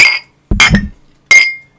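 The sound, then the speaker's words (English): Glasses clink together in a toast at deer camp, three bright strikes in quick succession, each leaving a short ringing tone, with no voices. “So I guess we can raise a glass to those guys.”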